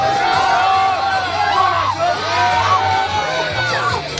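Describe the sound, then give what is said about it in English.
A big stadium crowd at the Iowa vs Iowa State football game roars and cheers continuously as President Trump throws footballs into the crowd, a dense wash of shouting and whooping voices with a low steady hum beneath, loud and sustained throughout without a break. “Fans GO WILD as Donald Trump attends Iowa vs Iowa State football game”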